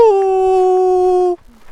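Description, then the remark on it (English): Someone imitates a very loud coyote call heard from the field next to a campsite: one loud, sustained wail that dips slightly at the start, holds nearly steady for over a second, then cuts off abruptly into quiet. “And then suddenly I was woken up by the loudest coyote call I've ever heard so far.”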